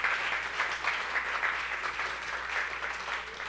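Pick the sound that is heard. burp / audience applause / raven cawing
audience applause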